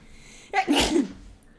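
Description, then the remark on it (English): A single forceful sneeze bursts out after a brief quiet lead-in, a sharp breathy explosion that fades quickly into silence. “Like, oh, I'm gonna fucking sneeze.”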